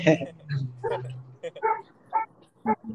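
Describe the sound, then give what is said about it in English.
A dog barks repeatedly, six or seven short, sharp barks in an uneven rhythm, moderately loud, with a low droning hum underneath during the first half. “Hey, I hear your dog.”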